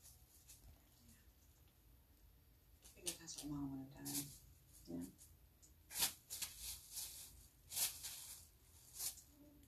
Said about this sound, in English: Yeah. Try to ignore the sound of plastic.